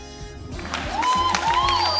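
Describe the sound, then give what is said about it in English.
A burst of crowd applause swells in after a quiet start, dense steady clapping joined by high gliding whistles, continuing loudly to the end without any speech. “Please, please stop your applause.”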